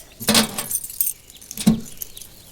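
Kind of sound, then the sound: household object, keys jangling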